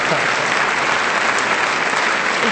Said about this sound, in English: Hey, wait till the clapping's over.